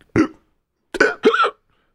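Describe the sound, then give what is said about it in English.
A person imitates hiccups with three short, sharp vocal bursts, one followed by a pause and then two close together. The sounds are fairly loud, with no talking between them. “I can't do an impression of a hiccup. Can you, too?”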